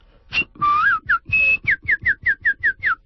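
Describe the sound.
A person whistles a birdlike song while walking: a long rising slide, then a quick run of about eight short, bright chirping notes in steady rhythm, imitating birdsong.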